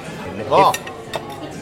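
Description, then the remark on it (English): Dishes clatter as plates of chips are set down, a bright clink of cutlery and crockery around the middle, then a lighter tap, with a faint murmur underneath. “The chips have arrived.”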